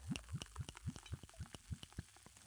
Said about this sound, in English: Right, and watch this. So we've put the Stella in, and now we'll put in the WKD, and watch this, it goes bright green.